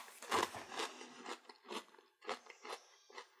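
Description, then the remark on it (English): Crisp crunching of dry All-Bran cereal being chewed, a steady series of sharp bites and grinding chews with brief pauses, no talking. “I'm going to try one dry real quick.”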